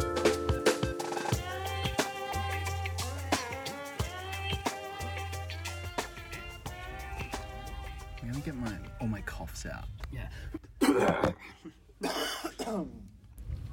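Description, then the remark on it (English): A musical intro gives way to low background murmur, then two loud, harsh coughs burst out near the end, one after another, from a person recovering from COVID. “Those COVID coughs out.”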